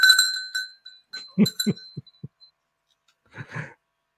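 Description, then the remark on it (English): A small bell rings out with a bright, lingering tone, then chimes again briefly, followed by a few soft, dull knocks and a short muffled rustle. “I could hear this bell in the background, and I'm thinking like, what can I hear there?”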